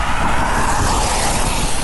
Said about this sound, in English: The good news is I have an umbrella, so when the wind starts to blow my face off like it's doing now, I can block the wind.